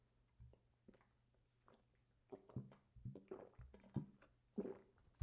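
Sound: sipping water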